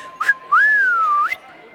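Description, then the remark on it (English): A person whistles a short tune: a brief chirp, then a long sustained note that rises, dips slowly and flicks up at the end. Clear, with no talking. “Worried about this whole whistling thing.”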